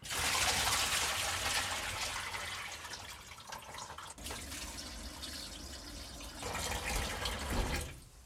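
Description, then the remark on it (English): Cold water runs steadily from a tap, loud, with sloshing and splashing as a whole pluck of offal is rinsed by hand to wash off blood; the flow dips briefly midway, then surges again. No one speaks. “So I'm going to rinse the whole pluck in some cold water first, and then I'll pour this off and start anew because there's quite a bit of blood.”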